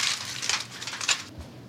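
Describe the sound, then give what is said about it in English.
Aluminum foil crinkles and rustles as it covers a dish of meatballs made ahead for a potluck, in a steady run of crisp, bright, crackling bursts that swell and fade unevenly, with no voices. “Now I'm just gonna cover them in foil and keep them in the fridge overnight.”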